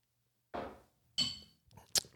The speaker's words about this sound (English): The Clinky. The Clinky. Cheers, fellas. Cheers, gents. Out with the bad spirits.